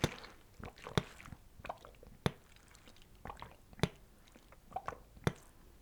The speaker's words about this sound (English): My mic is like picking up on me drinking water. Sorry if that's gross or whatever.